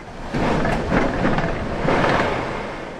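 A loud, continuous roar of hurricane-force wind as Hurricane Ian arrives in Florida, rushing like a freight train, swelling in powerful gusts with no pauses and no voices.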